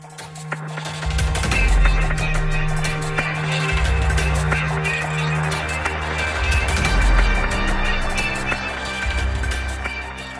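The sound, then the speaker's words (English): A processed violin melody, smooth and synth-like, plays over a steady, low guitar-like drone that sustains throughout, with deep pulsing swells underneath and no voices. “So right after you've established this rhythm bed, this kind of low guitar-like drone comes in, and then there the melody, which sounds like kind of a decent synth string patch.”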